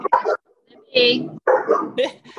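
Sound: dog barking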